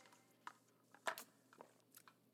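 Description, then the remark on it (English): A quiet sip from a drink: a few small wet mouth clicks, then a brief slurp and swallow, with no talking. “Jeez Louise, that deserves a sip.”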